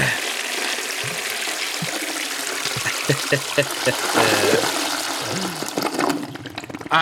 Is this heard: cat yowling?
no